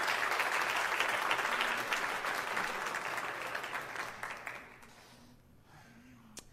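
An audience claps their hands in a dense, steady burst of applause that gradually thins and fades over several seconds, with a faint voice emerging underneath near the end.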